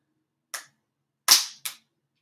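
A tiger-print slap bracelet snaps sharply onto a wrist: three crisp, bright smacks in quick succession, the middle one loudest with a short rattling tail, and no talking around them.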